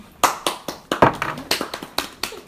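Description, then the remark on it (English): Clapping to welcome two guests: a string of sharp, fairly loud hand claps in a steady rhythm, roughly four per second, with a few overlapping. It sounds like a small group rather than a big crowd, and no one speaks. “Round of applause.”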